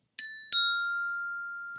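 phone ringing

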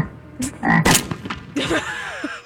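frog croaking

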